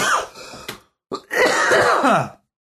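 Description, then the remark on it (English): Loud bursts of coughing tangled with breathy laughter: a short laughing run, a sharp cough, a brief pause, then a longer wheezy laugh-cough fit that trails off. “Okay, now that's a laugh cough.”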